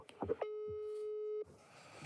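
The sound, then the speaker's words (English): A European telephone ringing tone sounds once as a single steady, mid-pitched tone lasting about a second, clear, with brief muffled voice sounds just before it and faint rustling after. “European ringtone.”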